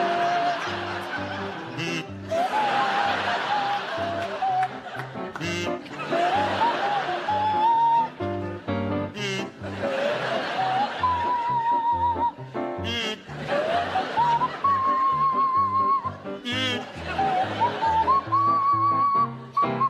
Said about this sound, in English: provide us with a rendition of Do Re Mi to feature Barry Cryer on the kazoo and Graham Garden on the Swanee whistle